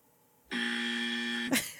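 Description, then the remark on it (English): A loud game-show style buzzer sounds once to signal that time is up, a steady harsh tone holding for about a second before cutting off with a brief noisy burst, heard alone with no talking. “Time is up. Hold on. Doesn't know …. Yo, I got the buzzer”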